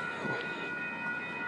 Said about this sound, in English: So now I'm waiting for the train. It sounds like the train is coming soon.